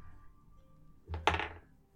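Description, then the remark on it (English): Dice rolled for a persuasion check land on a table with two quick, solid thunks, followed by a brief clattering rattle that fades within half a second; the roll comes up 16. A quiet background hum runs underneath. “Celestia, roll a persuasion check, please.”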